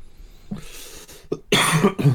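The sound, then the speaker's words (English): A few harsh coughs: a brief one, a short pause, then a louder cluster of rough, raspy coughs near the end, with no talking around them. “Anytime anyone coughs.”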